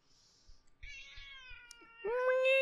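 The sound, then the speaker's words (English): An emotional support cat named Tara Jr. meows in a long, drawn-out cry that swells and rises in pitch toward the end, with soft low thumps underneath and no talking. “And thank you, Tara Jr., for being an emotional support cat.”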